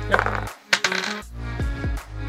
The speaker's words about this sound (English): Did you know 7 is the most commonly rolled number? When you roll 2 dice? When you roll 2 standard D6 dice.